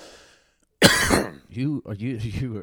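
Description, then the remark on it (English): A man lets out a single harsh, loud cough, a short explosive burst that is quickly followed by someone talking. “He's coughing on me.”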